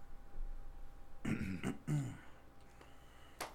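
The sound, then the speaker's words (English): Someone clears their throat in a couple of rough, guttural rasps, followed by a short pause and a faint click or sniff near the end. “Clear your throat.”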